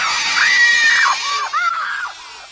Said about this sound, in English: But to go chronologically from movie to movie, to go from Marion in Raiders to Willie Scott in Temple of Doom, I mean, she's so grating. She screams 71 times.